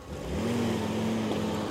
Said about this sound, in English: The expectant silence was shattered by the rumble of approaching vehicles.